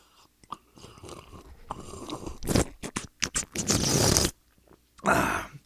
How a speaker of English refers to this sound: Excuse me, I'm having my coffee right now. Can I take a sip of this? Hang on.